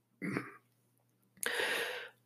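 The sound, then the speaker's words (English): Two harsh, raspy coughs from a person first thing in the morning: a short throaty one, a brief pause, then a longer, louder, rougher burst, with no talking. “I'm like coughing up a lung over here.”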